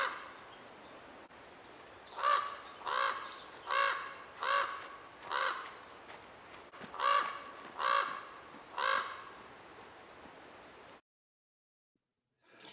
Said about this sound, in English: And here we have the hearty voice, the low voice, the loud voice of the raven.